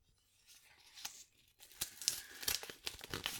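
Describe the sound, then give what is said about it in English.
An envelope for the Best Lead Actor award is torn open: a soft, papery rip that builds into a series of crisp, crinkly tearing bursts over a few seconds, with no voices. “The envelope, please.”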